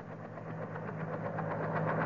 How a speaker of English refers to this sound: Listen. Helicopter.